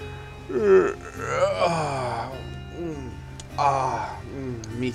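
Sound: yawn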